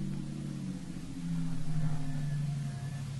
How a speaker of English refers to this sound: Might be this car coming.